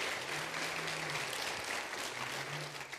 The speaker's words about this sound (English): Let's give our visitors a round of applause.